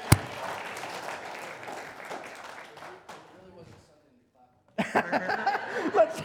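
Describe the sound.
A crowd claps and chuckles for about three seconds, the applause thinning out into a brief silence before a fresh burst of lively crowd noise and voices.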